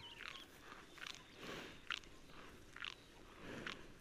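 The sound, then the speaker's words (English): Cows chewing their cud (ruminating, re-chewing regurgitated food), a steady rhythm of soft, crunchy grinding bites about once a second, quiet against a faint background hiss, with no talking. “And I'd say most of the cows around us right now are busy chewing their cud.”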